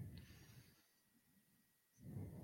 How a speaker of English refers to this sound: Stop breathing in the mic like a creep. Sorry, I can't hear myself, so I don't know when I'm breathing into the mic.